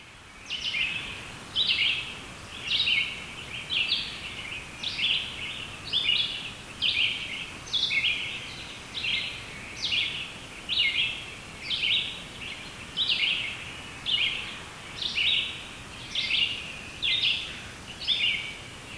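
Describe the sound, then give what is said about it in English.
A red-eyed vireo sings short, high-pitched phrases over and over, about one per second, in a steady rhythm over a soft background hiss. No one speaks. “if birdsong identification isn't your thing, that you can still just listen to the birds sing”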